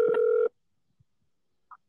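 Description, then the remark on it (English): A phone call, redialed to reconnect a dropped call, comes through a speaker as a brief, steady electronic ring tone lasting about half a second, then quiet apart from a faint click and a short, soft beep. “Let's see if we can get him back. This little, like, thing is a little finicky sometimes.”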